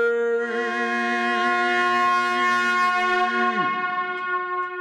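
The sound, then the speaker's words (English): A big, loud truck horn sound effect blares in one long, steady, brassy blast for nearly four seconds, then its pitch sags downward as it cuts out. No one speaks. “Can you get that big, loud truck horn?”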